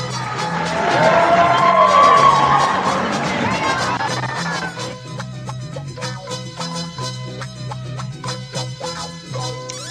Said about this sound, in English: Let's get the crowd into it. Come on, crowd. Give another hand for AJ Velez.